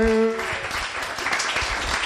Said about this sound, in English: Should we give them all a massive round of applause, please, everybody? Thank you so much. Thank you.